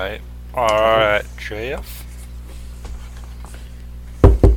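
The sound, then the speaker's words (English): A few quick, solid knocks on a door sound near the end, after brief wordless vocal sounds and a quiet stretch of room noise. “I'm going to leave, and then I'm going to knock on the door, and you guys host it, and I'll be the guest, okay?”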